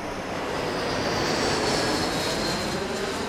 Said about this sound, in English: I let go. That's it. And the plane lands.